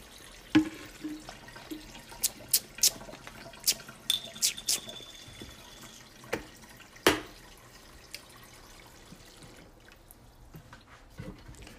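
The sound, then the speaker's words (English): Water is poured to make pink lemonade in short, irregular splashes and drips, about a dozen sharp wet impacts over several seconds, fairly clear, then fading into quiet. “Get this pink lemonade going on.”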